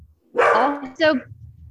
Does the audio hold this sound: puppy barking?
yes